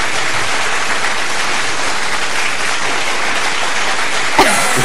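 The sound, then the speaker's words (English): Sustained applause from a crowd played as intro claps for an entertainment report segment; dense and steady clapping at a loud, even level for several seconds without a break, ending abruptly. “I hate that clap. It's the longest clap.”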